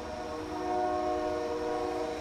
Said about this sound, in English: The train.